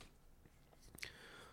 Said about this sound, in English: Excuse me while I take a little sip of my coffee. Do you drink just black coffee?